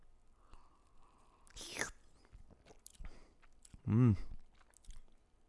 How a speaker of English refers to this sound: All right, I'm going to do a sip here.